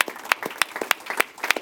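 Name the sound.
audience applause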